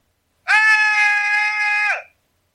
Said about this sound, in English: Okay, that's pretty good, right? Like, you're killed off screen in a room. Like, everybody's trying to get out of the room. The door shuts. You're still there. And that's how you scream. That's all they hear.